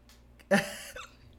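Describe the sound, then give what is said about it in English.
A single sharp, fairly loud hiccup, with a short voiced catch that trails off into quiet breathing. No talking around it. “I've got the hiccups now, so you're going to be hearing me in my hiccups.”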